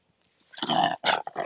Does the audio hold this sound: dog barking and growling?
yes